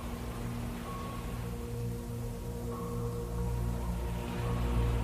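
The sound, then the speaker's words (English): Steady rain patters on a Japanese paper umbrella made of wax paper and bamboo on a rainy Sunday afternoon, a dense, continuous wash of soft drops with no talking, over a faint low hum that persists throughout. “The Sound Of Raindrops On A Japanese Paper Umbrella”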